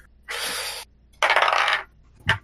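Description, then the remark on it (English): Dice rolled during a tabletop role-playing game rattle and clatter across a hard tabletop in two quick bursts of bright, rattling noise, followed by a short final knock as one settles. Fairly loud, with no voices. “I'm going to use a different dice this time.”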